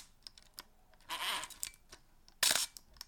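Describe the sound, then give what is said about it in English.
The shutter of a Zeiss Icon Contarex Bullseye SLR camera fires, with scattered small mechanical clicks and two louder, brief snapping bursts of mechanism noise about a second apart. No one speaks. “Give me a fire the shutter of that thing, if you don't mind.”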